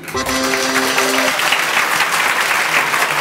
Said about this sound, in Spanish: A ver esto. Aplauso acá.